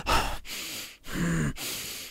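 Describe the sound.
A voice imitates a nervous man's heavy breathing: four loud, rasping breaths in quick succession, alternating in and out with short pauses between them, and no talking.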